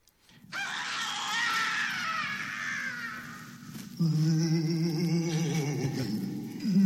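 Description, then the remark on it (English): Overlapping ghostly screams and wails from a sound-effects record, the first cue on its second side of raw elements, rise and slide in pitch, loud and sustained, with a sudden shift at about four seconds to a denser, harmonic-rich chorus of eerie cries. “And Q13, I believe, is the first cue of that second side where it was screams.”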